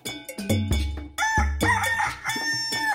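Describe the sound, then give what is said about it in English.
A rooster crows loudly at dawn over Ishekiri land, its long rising-and-falling cock-a-doodle-doo cutting through with no talking, set against a strong low rhythmic thump of music or drumming. “30 days later, as the cock crows, the nominees arise to the breaking of dawn over Ishekiri land.”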